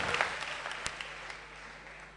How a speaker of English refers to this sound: Give the Lord a clap offering and you may be seated.